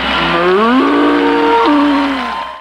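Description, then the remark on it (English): A man's voice imitates a cow, giving one long, loud, drawn-out moo that shifts pitch partway through and fades at the end, with no other talking. “And then he gives us a very good moo.”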